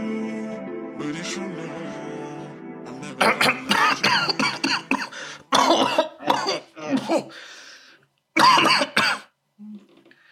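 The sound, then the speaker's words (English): A loud coughing fit: a rapid string of harsh, rasping coughs in uneven bursts with short gasping pauses, following a few seconds of steady droning tone. “That was a quick fire problem, having a coughing fit.”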